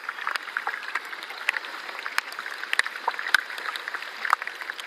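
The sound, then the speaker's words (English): Ice from a small, glassy melted iceberg bubbling and fizzing: a steady, dense crackle of tiny pops and clicks as tiny flakes of ice crack and break, with sharper snaps breaking through every so often. There are no voices. “It was bubbling and fizzing away.”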